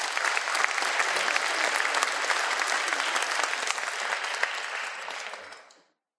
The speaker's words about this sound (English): Give everybody a round of applause there, folks.